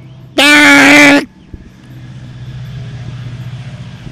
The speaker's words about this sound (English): It's a train. You guys might see it in the background.